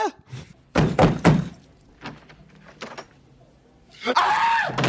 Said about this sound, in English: Slams the door, opens it again.